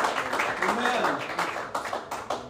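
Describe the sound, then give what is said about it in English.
An audience claps their hands in a dense, steady patter, with voices faintly mixed in beneath the clapping. “If you believe that today, go ahead and clap your hands.”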